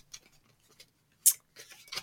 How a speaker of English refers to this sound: So I'm shuffling the cards now. And I want you to tell me when to stop.